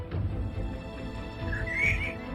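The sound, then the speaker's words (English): Someone does a vocal impression of a horse neighing: a short, wavering, whinnying cry that climbs toward the end, fairly loud and close, with no talking around it. “as he's galloping, he's gonna like one hoof gallop while one hoof throw the cart with his giant horse muscles.”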